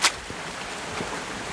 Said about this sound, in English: Even the footpath has its waterfall. I can really hear the stream beside me.